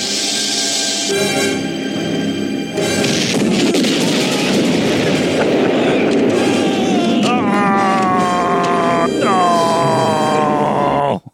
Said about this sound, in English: So yeah, the thing like careens off of the out of the water onto another beach and bursts into flames immediately. It was awesome. The explosion was amazing, which doesn't really make sense that the boat exploded, but it's fine.